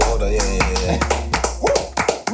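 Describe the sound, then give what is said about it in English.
A run of sharp, loud hand claps in a quick, uneven rhythm, roughly eight or nine crisp smacks over a low, steady tonal hum and murmur. “The clap was actually 46. To key me in.”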